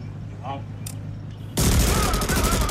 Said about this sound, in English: and the rubbish truck turns up, garbage truck, and then the two guys on the garbage truck pull out Uzi machine guns and machine gun the guy down, and he drops dead.